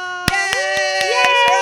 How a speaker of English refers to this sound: Clap her onto the stage.